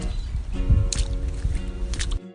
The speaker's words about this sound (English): The subtle splashes when walking through puddles.